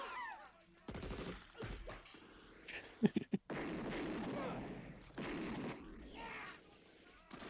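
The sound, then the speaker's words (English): Handgun and shotgun fire: a few sharp, loud cracks early on, then a quick burst of two or three louder shots in the middle, set against a busy rumbling background with some voices. “I think the handgun made more noise than the shotgun.”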